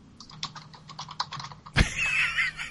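Rapid, frantic clacking of computer keyboard keys, about a dozen quick keystrokes in a rush, ending with a sharp hit followed by a bright, hissing burst of noise.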